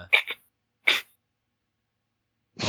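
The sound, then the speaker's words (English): A quick double sneeze followed by a single sharp sneeze, separated by silence, with another loud burst starting just as the sound ends. “Sneezed, yeah.”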